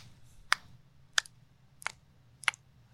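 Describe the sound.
Four crisp imitated finger snaps or clicks in a steady, evenly spaced rhythm, sharp, over a faint low background hum with no talking.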